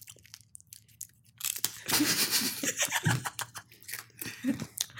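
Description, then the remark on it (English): Loud, crisp crunching of Jatz crackers being chewed, with irregular bursts of crackling bites after a quieter opening, continuing steadily with a low hum underneath. “There's crumbs everywhere. I'm getting confused now because it's still in my mouth.”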